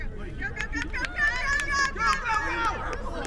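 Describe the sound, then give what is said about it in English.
A group of ROTC students shout and cheer each other on while running drills outdoors on Hooker Field at UNC in the early morning, with overlapping raised voices and brief sharp calls over steady background noise. “ROTC students cheer each other on while running drills on Hooker Field in the early morning.”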